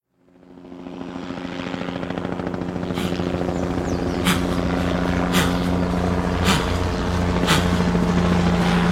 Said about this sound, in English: Is that her? In the chopper?